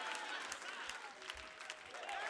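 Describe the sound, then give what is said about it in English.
A large church audience stands and claps continuously in praise of God, a dense, steady wash of hand claps, with scattered voices shouting praise over the applause throughout. “If you believe it, get up on your feet, clap your hands, and give God a shout of praise.”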